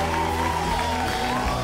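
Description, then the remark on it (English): A steady wash of crowd applause and cheering, played as a sound effect in a studio, loud and continuous throughout, mixed over a song playing underneath with sustained musical tones. “I'm putting applause noises.”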